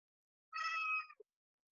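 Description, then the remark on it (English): A single short cat meow, high and slightly drawn out, heard alone against silence, followed by a tiny soft click. “I've got the cat now.”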